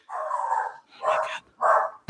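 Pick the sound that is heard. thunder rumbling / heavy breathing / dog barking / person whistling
dog barking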